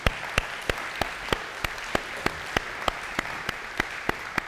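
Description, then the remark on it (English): Church audience applause celebrating an increase in the missions budget: a steady wash of many hands clapping, with one set of sharp, evenly spaced claps standing out in a quick regular beat, about three per second. No one speaks. “In our missions, we were able to increase our missions budget $65,900, right? Yeah, clap.”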